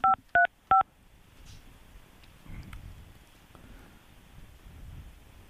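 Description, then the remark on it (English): Three quick, loud two-tone keypad beeps from a phone being dialed for a live call, evenly spaced in the first second, followed by a soft rustling, rain-like background hiss with no speech. “We're going to give them a call.”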